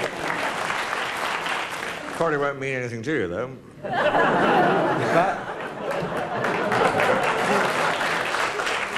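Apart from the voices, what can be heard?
audience applause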